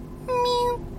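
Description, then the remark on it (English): A person imitates a cat's distressed mew with a single sustained, high, thin tone that holds steady for about half a second over a low background hum. “I went for a jog, and I was walking back to my house, and across the street from my house, I saw a cat on the other sidewalk, and I could hear it mewing, like, mew.”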